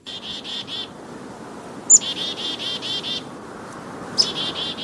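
Outdoors on a birding hike in Blackwater Falls State Park, West Virginia, a bird repeats a fast, buzzy trill in bursts, with two sharp high chirps cutting in, all over a steady rushing background like wind or running water.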